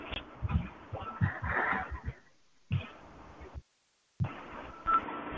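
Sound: phone keypad tones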